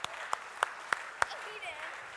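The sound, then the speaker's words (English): A thin round of applause for the moms in the room on Mother's Day, while flowers are handed out: about five sharp, evenly spaced hand claps in the first second and a half, then fading into a low murmur of background noise. “And while these flowers are being distributed, I just want you to give a round of applause for all the moms in the room.”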